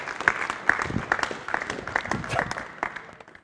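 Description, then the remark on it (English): A church audience claps for Jesus in a dense, sustained burst of many overlapping hands, with a few sharp louder claps standing out, steady for a few seconds before easing off slightly. “Could you clap Jesus for that one?”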